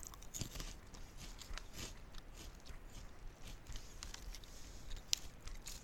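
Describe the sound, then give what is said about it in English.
Crisp crunching of someone chewing a crunchy snack, with repeated sharp bites and brittle crackles in a steady rhythm and no talking. “I'm chewing.”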